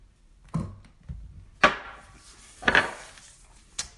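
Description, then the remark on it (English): A shot glass hits the floor with a series of hard clunks: two loud, sharp knocks in the middle, fainter thuds before and after, and no one speaking. “You heard the shot glass hit the floor.”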